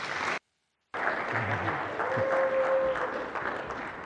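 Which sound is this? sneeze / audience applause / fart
audience applause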